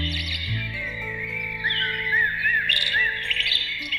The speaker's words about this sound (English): This is a recorded collection of birds contained in a small motion-activated box that you can use to bring some sound into your apartment. With Dubai being all metal and glass, I thought this memento of nature could soften the vibe.